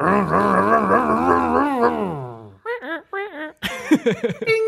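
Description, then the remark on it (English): A man's voice imitates a roaring engine: a loud, rumbling, wavering drone that revs for a couple of seconds and winds down, followed by a few short chuckling bursts. “I want to redo our engine noise.”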